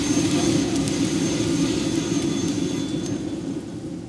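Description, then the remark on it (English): A loud, steady mechanical roar from a coffee roaster's cooling fan and stirring mechanism, switched on by the roaster's computer to cool the coffee, with a dense low rumble and a faint high whine, holding constant for the whole stretch with no voices. “That's the computer telling the fan to turn on so that we are ready to cool the coffee off so it doesn't go over temperature.”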